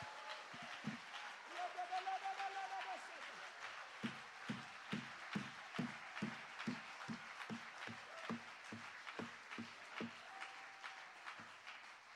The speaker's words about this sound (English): Come on, give Jesus a great big hand clap of praise right now.